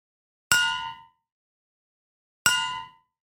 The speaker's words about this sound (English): you'll hear the bell and you go, what? Oh, that's my reminder.